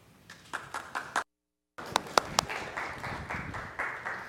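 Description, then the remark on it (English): A church audience claps after a public reading of Scripture: a few sharp, scattered claps at first, then a brief silence, then fuller steady applause with several louder individual claps standing out. No one speaks. “Might as well clap for a public reading of Scripture.”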